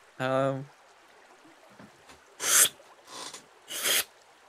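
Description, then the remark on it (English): A short voiced hum, then a voice imitating boots pulling through mud with three breathy, squelching bursts, evenly spaced and fairly loud, with quiet pauses between them. “That's my boot sound effect. Okay. That's like pulling.”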